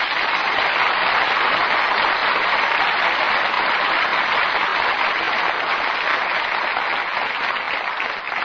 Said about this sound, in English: And now you can all sit back and relax and join me in well-earned applause for Richard Widmark, Paul Douglas, and Joyce McKenzie.